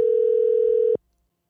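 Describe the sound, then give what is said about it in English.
A single burst of an outgoing phone call's ringing tone, a steady electronic hum lasting about a second before cutting off abruptly into silence. “All right, let me find him in my phone here.”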